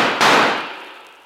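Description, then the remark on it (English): A loud, sharp gunshot in a shootout with bandidos cracks out over the fading tail of an earlier blast, then rings away in a long, smooth decay. No voices are heard. “Get your guns ready, boys, and make every shot count.”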